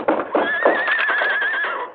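A horse named Silver whinnies loudly for about two seconds, a shrill, wavering neigh with a quavering high tone over rough, breathy bursts, and no voices present.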